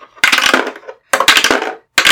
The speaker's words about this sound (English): Okay, let's roll some dice.